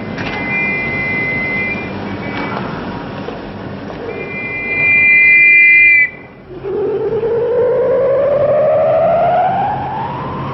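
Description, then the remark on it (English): A strange, loud electronic echo in the air around a digging site: steady high whining tones over a rumbling wash, then after a brief drop-out a long, rising siren-like sweep with ringing overtones. No one speaks. “But whatever reason he's doing it for, there's a strange, loud electronic echo just sort of in the whole air around the site.”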